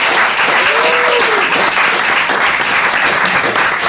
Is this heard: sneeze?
no